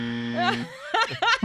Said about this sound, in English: Well, where's the buzzer?